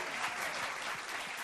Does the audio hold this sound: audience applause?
yes